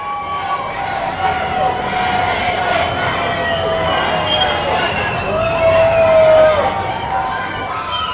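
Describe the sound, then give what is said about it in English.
A studio audience at the Banger and Classic Awards 2022 cheers and makes noise: a steady, dense roar of crowd chatter and shouting with a few high whistles rising above it, holding at a loud level throughout. “Right, shut up, you lot, shut up. Sorry, just audiences, eh?”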